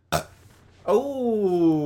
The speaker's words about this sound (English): Burp number 6?